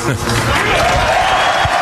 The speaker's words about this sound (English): And then every answer, there was a big cheer, questions that the fans didn't want to hear. They got booed. It was such a unique environment.